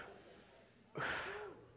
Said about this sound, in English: What you just did is something called breathing. Breathing air.